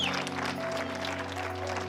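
An audience at Island Church claps together in a steady, dense burst of applause, many hands overlapping, with a low sustained hum of organ or music underneath.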